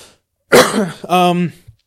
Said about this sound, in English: You've had a cough all show. My cough is coming back, actually. Oh. It kind of sucks, but it's coming back.